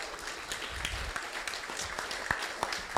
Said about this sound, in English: Can we give everyone a round of applause?